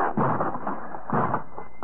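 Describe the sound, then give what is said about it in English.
A stuck door of a house being forced open: a steady scraping, rattling strain broken by a few heavy jolts as it is shoved, fairly loud throughout with no voices. “This door seems to be stuck.”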